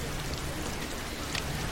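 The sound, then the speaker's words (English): Steady rain falls late at night at the docks of the Piraeus in Athens, a dense, even hiss of drops with a few brighter spatters standing out, moderately loud, with no voices. “You are working, it is raining, and it is late.”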